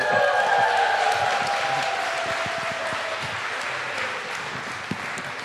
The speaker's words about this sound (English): Finally, I get a round of applause when I come up as opposed to when I go down.